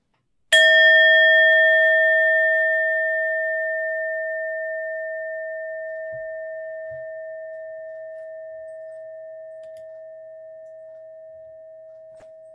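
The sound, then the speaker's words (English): A single struck worship bell rings out clearly with a sharp onset, then its pure, steady tone hums and slowly fades over about twelve seconds, heard alone. “And now, as we prepare to worship together, I encourage you to settle in comfortably, take a deep breath, and release any tension that you might be holding while we listen to the ringing of the bell.”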